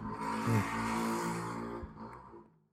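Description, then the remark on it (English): A small moped engine buzzes past, its whiny drone holding steady for a couple of seconds before fading away as it moves off. No one is talking. “Little moped going by.”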